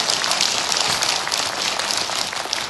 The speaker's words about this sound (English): I get it. It's easy for them to clap because they're already here.